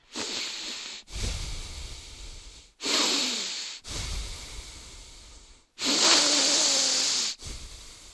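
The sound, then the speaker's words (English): A voice impersonates a man who is a loud breather, imitating his heavy breathing through the nose: six loud, airy breaths alternating in and out, each lasting about a second, hissing, with no words. “Like there were, but I was so distracted by his heavy inhaling and exhaling through his nose.”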